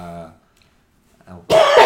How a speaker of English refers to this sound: Sorry about coughing on the stream.